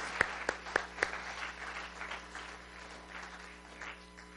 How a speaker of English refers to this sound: Can I get a big amen? Give Jesus a big hand clap today.